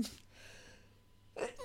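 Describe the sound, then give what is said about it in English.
A person sneezes, a sudden sharp burst of breath at the end, after a brief breathy intake and a faint, thin high-pitched tone in otherwise quiet surroundings. “Bless you, honey.”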